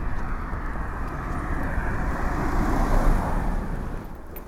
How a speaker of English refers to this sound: Very often, this park, I very often sleep in it during the summer, and I like waking up in the small hours and seeing the traffic whir past on the A41T.